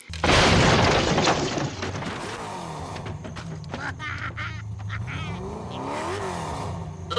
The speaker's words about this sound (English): the side with such force, this little go-kart, that it manages to barrel roll the truck down the hill.